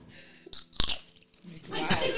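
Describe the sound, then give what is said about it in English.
A sharp crunch of a hard candy cane being bitten, followed by a few seconds of wet, noisy chewing, with no talking. “That was quite a crunch.”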